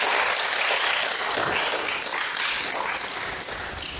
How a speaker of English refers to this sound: Let's give the Lord a good round of applause.